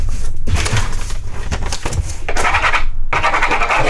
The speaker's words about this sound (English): All right. What are you writing over there?